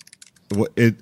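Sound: computer keyboard typing clicks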